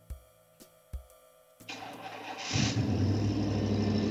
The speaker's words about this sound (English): Who started one of the cars? Jesus, don't drive the Lumina out of here. Oh, God, who's stealing the Lumina?